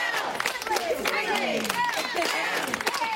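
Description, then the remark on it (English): Walmart store employees in Maryland give a group cheer together, many overlapping voices rising and falling in a loud, steady burst of excitement that lasts a few seconds. “It doesn't change even when her fellow employees give a group cheer.”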